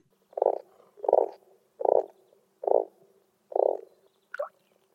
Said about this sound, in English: I don't know if the chirping is audible. There might be chirping. We apologize for that. Yeah, I have frogs and they make sounds sometimes. So if there's random chirping at any point, it's my frogs.